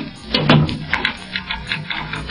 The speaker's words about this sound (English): Well, if you and her are ready to leave the room and go down to the lobby, Monsieur Fletcher, I will lock the door.